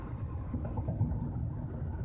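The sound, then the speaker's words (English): Steady low rumble of a car interior while driving in Saturday traffic, with engine and road noise droning continuously and no voices. “But man, I'm glad I got gas, because I have traffic right here on a Saturday.”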